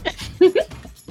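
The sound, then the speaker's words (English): A quick sneeze in two sharp, voiced bursts, a short intake followed by a louder burst, standing out clearly against faint background murmur. “Bless you.”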